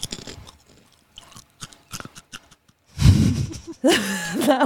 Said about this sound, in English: You know, the crunch does sound like something kind of airy or not solid, like something kind of crunchy but hollow. Okay. Or like I'm thinking like a, what are those cereals? Chex?